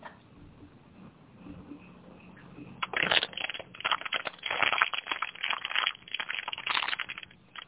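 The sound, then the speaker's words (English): A plastic water bottle being crunched and crinkled, a quiet start giving way to loud, irregular crackling bursts that continue for several seconds with no talking. “I have my crunching water bottle.”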